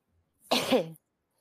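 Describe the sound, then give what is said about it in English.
A single abrupt cough lasting about half a second, harsh and breathy with a voiced throaty tail, standing alone against silence. “I'm sorry. Cough.”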